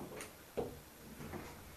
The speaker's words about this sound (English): The door to this small room squeaks open.